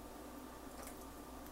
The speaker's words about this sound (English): There's my A1 sauce. I'm just gonna pour in a little bit just to add to the flavoring.